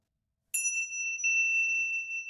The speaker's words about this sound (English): The Focus at Will system has a timer on it, and there's a bell that you'll get used to hearing. I'll just show you what that sounds like. You hear this bell.